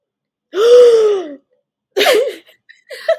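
A loud, sharp dramatic gasp, drawn in with a rising-then-falling voiced tone and lasting nearly a second, followed by a couple of brief breathy vocal noises.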